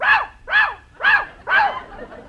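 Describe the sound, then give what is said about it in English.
A parrot named Polly mimics a dog, giving four sharp, fairly high barks in an even, steady rhythm, each about half a second apart, with no talking. “Jack, what have you been feeding this bird?”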